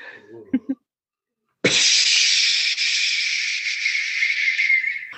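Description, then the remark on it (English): Water splashes onto hot stones in a hotel sauna and erupts into a loud, steady hiss of steam that holds for several seconds, after a few brief soft knocks and a short pause. “Hot stones turn liquid to steam.”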